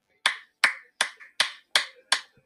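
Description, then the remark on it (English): One person claps their hands slowly, six sharp, dry claps in an even, steady rhythm, with brief silence between each and no talking. “I know that's a dry ass hand clap, but you know, it's the thought that counts.”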